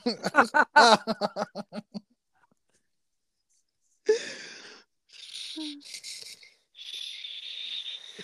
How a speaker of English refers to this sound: I thought I was breathing loud, but damn. It was just being dramatic.